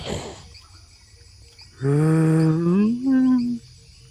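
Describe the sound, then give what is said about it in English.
A male red deer stag calls with a deep, harmonic bellow that rises slightly in pitch, then breaks into a second shorter groan. The loud call stands alone against near silence. “And then the figure of a red deer, a male red deer, walks slowly out, holds up its head to look at you.”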